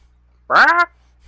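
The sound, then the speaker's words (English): A person's voice mimics a bird with one short, nasal, quacking squawk, loud, lasting under half a second against a quiet background with no talking. “Yeah, that just sounded like you making bird sound.”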